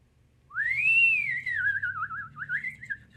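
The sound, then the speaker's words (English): A person whistles with their mouth, a single sustained tone that rises, then wavers and trills downward in a warbling glide, fairly loud, with a low hum underneath. “That's a very good whistle.”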